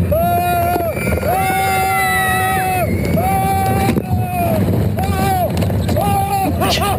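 A recording of a roller coaster ride: two riders let out several long, high-pitched screams that rise and fall one after another over a loud, constant roar of wind and rushing motion.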